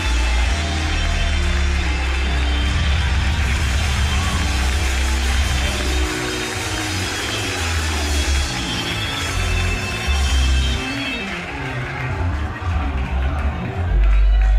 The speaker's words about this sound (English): Come on and clap your hands real fast. Clap your hands real fast.